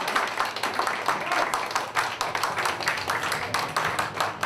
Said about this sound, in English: And that's the show, ladies and gentlemen. Can we have another round of applause for all the lovely ladies and designers and gentlemen who participated in this event?